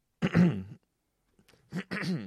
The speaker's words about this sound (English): Let me clear my throat before we begin the quest log.